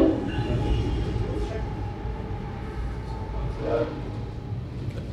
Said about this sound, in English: I think we have a train coming. Oh. This is a challenge of recording. I can see, yeah.